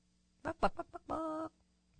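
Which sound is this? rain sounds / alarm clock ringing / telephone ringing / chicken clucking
chicken clucking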